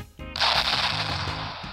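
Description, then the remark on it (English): A loud explosion erupts suddenly and sustains as a dense, hissing roar with a rumbling tail, set over a steady low musical drone. “No holiday is complete without explosions!”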